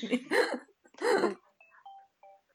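A mobile phone rings with a faint melody of short, high electronic tones, heard just after two loud, harsh noisy bursts.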